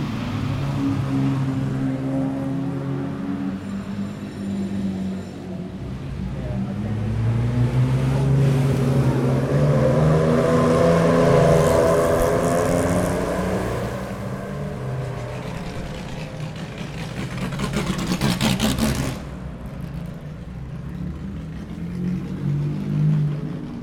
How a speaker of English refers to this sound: saloon cars from the 1950s, racing sports cars. Slithering a little bit as they do a 90 degree turn.